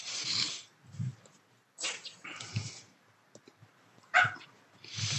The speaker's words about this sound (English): The dog says woof.